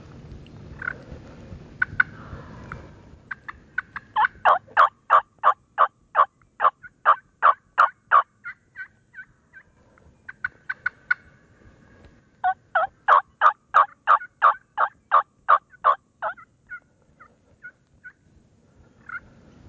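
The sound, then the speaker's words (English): Many wild turkeys in thick cover gobble in two long, rapid rattling bursts with a brief pause between, loud, with no voices and only faint low rumble behind. “It's so thick and there's so many dang turkeys in here.”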